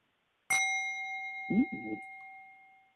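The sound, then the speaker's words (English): A single strike on a Tibetan singing bowl rings out, its bright metallic tone sustaining and slowly fading over a few seconds, with a brief low murmur midway through the ring. “Wait, I got a good one. This singing bowl. It's from Tibet.”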